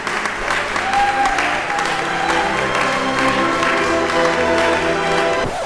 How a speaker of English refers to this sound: Everyone will hear it and erupt into wild applause for your phenomenal achievement.